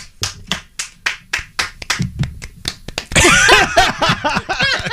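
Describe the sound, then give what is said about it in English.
A single man claps steadily, about a dozen sharp claps over three seconds, then a louder, denser burst of voices and noise takes over with a few claps still mixed in. “The sound of one man clapping.”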